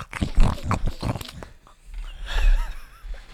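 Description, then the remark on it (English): A person imitates a pig eating from a trough with a quick run of wet, snorting chomps, then lower grunting snuffles and a few rising squeaky notes, fairly loud. “Can you do an impression of a pig eating from a trough?”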